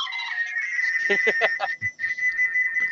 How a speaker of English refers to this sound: Oh, there's some Morse code in there too.